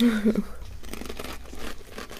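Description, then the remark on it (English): Crisp crunching from chewing a crunchy, salty mushroom snack, a run of irregular crackly bites lasting a couple of seconds, with a brief hummed vocal sound at the start. “Yeah, very crunchy. It's quite salty. It's very, very savoury.”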